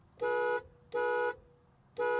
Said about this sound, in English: Hear how the horn sounds on the 2020 Acura NSX.